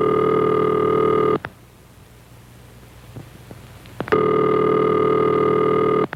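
A telephone ringback tone, heard after dialing a number on a rotary dial telephone, buzzes steadily for over a second, falls silent for a long pause, then buzzes again, a loud, harmonic-rich ring signal with no voices.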